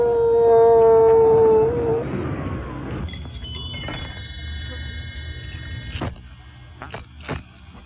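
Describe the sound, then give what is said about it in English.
A loud, drawn-out howl rises and sustains for about two seconds, then fades, leaving a quieter stretch of soft background tones and a few faint knocks. “Dance and howl.”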